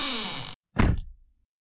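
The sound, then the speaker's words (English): A door swings shut with a short sliding rush followed by a solid thunk that fades quickly into silence. “I'm going to simply close this door and let you fly away on your helicopter.”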